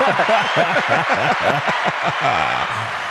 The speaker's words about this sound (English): Yeah, let's just get another little applause. There we go.